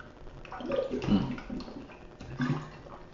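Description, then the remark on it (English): Someone drinks water from a glass, with wet sipping and swallowing sounds in two short bursts and a soft slosh of liquid between them. “For my audio audience, I'm drinking water.”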